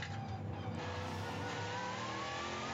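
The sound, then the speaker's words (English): The big V8 engine of the Multimatic Mustang race car roars steadily during the Michelin Pilot Challenge Laguna Seca 120 race, a loud, dense low rumble with rising whine as it accelerates, sustained throughout without pause and no voices. “Sound of the big V8 in the background is that of the Multimatics Mustang, currently sitting in behind the battling BMW and AMG.”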